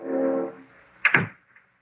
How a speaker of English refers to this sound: Janet closes the door and steps into the room.